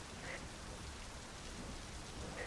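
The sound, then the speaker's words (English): Heavy rain pours down in a steady, dense hiss, with a low rumbling undertone and no voices, filling the whole stretch evenly from start to finish. “Rain upon rain upon rain.”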